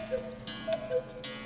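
A clock ticks twice at a steady, unhurried pace, each tick a crisp click over a faint ringing hum. No one speaks.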